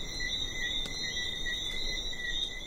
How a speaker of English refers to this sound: And when it gets dark out, it's so tranquil. There's just the sound of the breeze and these little frogs that come out at night and chorus all over the island.